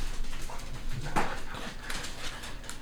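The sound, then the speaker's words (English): A dog lets out a single short, high whine in the middle, wanting to be let in, over a steady hiss of background noise, with no one talking. “Well, they're in, but we'll have dog background sounds.”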